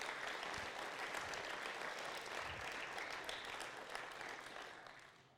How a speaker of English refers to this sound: So we have a wonderful team of adults who come along, who help supervise, make sure people get places and do all of that. So just a round of applause for all those guys as well.